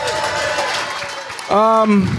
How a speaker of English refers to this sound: So when it comes to us doing Nightcap, I want y'all to give yourself a round of applause, too, for helping us reach this milestone, please.